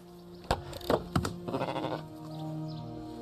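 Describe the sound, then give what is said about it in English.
Village goats bleat: a few short, abrupt cries followed by a longer, quavering bleat that trails off into a steady low hum. No one speaks. “We live alongside goats, pigs and poultry.”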